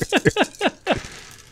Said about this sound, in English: Oh, that's too many dice I just heard roll. It's a fireball, buddy. It's always too many dice.